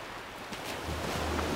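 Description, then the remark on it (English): A steady wash of ocean surf with a low rumbling swell that builds slightly partway through, soft, with no voices, heard from inside a classroom with the lights off. “When I was last alone in the classroom, I turned off all the lights and listened. And I wasn't wrong. The ocean was louder now.”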